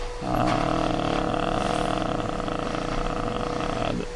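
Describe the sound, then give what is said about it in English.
A Hoover vacuum cleaner runs loudly for a few seconds, a steady roaring drone with a constant high whine that switches on and cuts off abruptly, with no talking. “It's hard here with this Hoover going on.”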